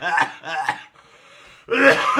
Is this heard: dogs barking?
no